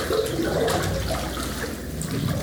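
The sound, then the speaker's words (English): Water sloshes and splashes steadily for a couple of seconds as a person enters a church baptistry, moderately loud, a continuous churning swirl with no voices over it. “She has professed faith in Jesus Christ, and I'm going to ask her to join me in the water.”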